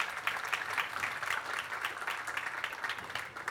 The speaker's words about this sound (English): Let's just give our leadership and our team just a round of applause for them real quick.